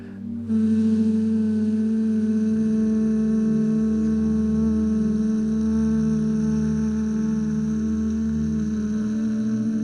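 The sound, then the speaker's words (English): A group of voices hums together on one long exhale to close a breathing session: a steady, low, buzzing drone that starts abruptly within the first second and holds evenly, fairly loud, to the end, with no talking. “And then to close this lovely session today, we are going to hum together.”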